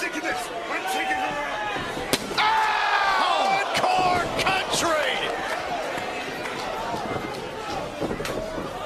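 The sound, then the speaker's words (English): A wrestler, Peraza, crashes down onto the ring mat with a sharp, heavy thud from a DDT following a chair shot and a kick, followed by another impact a moment later, all beneath a roaring, shouting crowd. “Peraza went for it with the chair and then the kick. And now the big DDT.”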